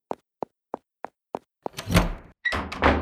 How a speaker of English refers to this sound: Door moving on its own.